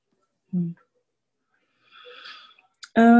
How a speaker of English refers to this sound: Whew. Man, listen to that yawn.